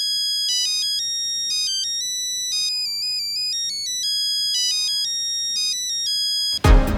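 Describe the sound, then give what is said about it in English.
A bright electronic phone ringtone plays the Für Elise melody, its beeping notes stepping through the tune and repeating phrases for several seconds before a brief burst of noise cuts it off. “And again, the fact that it was for many years a pretty major ringtone.”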